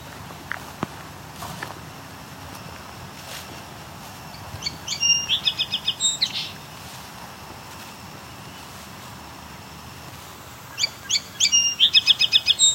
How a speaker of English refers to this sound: Song sparrow?